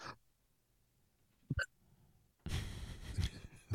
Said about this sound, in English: got the hiccups.